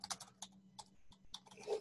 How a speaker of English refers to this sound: My amazing typing skills, but I can't spell.